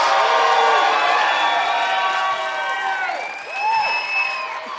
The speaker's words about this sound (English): And who loves peanut butter? See, it's just an applause thing.